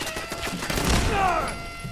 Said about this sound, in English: will you get out of the freaking gunfire?